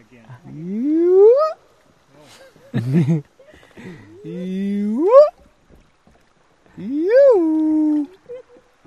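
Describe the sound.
A man imitates a hyena while floating along on an afternoon trip, entertaining the group with animal calls, letting out three loud, rising whooping calls with brief pauses and a short guttural grunt between them.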